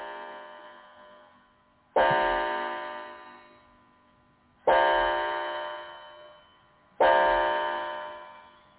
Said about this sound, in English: And we have another striking clock we just got. Yep.